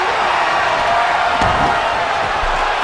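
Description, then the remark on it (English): A single heavy thud of wrestler Mysterio being slammed down onto a wrestling mat, brief and sharp, rising out of a loud, steady arena crowd roar that fills the whole clip. “Mysterio just gets slammed down.”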